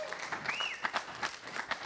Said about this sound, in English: Now, it hadn't had AC for a while, and thank God he got it working this week. Come on, y'all give him a hand clap just for me.